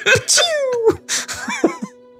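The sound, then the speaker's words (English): A voice imitates being stabbed by a sword such as Frostmourne, the blade first hitting the chest plate: a sharp, sneeze-like burst and strained gasps, then a falling, whimpering groan, fairly loud over about two seconds. “That's what it sounds like when you get stabbed by a sword, everybody.”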